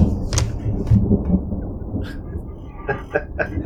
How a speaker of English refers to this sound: crossfade with the sound of thunder and lightning.